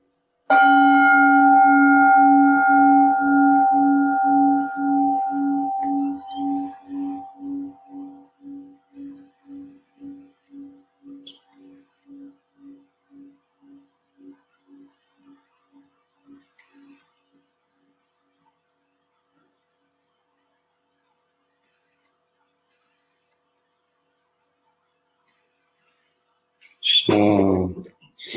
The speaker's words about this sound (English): Just let the sound of the bell bring the present moment to you. Listen with close attention to the sound of the bell.